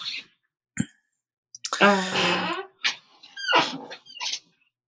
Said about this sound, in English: Yeah, it's me. Are you squeaking in my chair? I am squeaking in your chair. You might need to get like some oil and that. The problem is like I'm up and down.